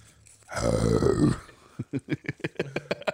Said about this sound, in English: What? I'm breathing. Sorry for breathing on your mic.